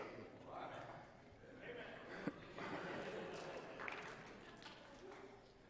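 Scattered applause from an audience, soft, mixed with crowd murmur and laughter, holding steady for several seconds.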